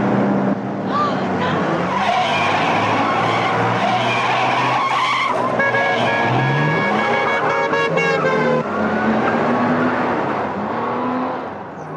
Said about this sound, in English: Must we go so fast, Rudy? That car can't possibly catch up with us.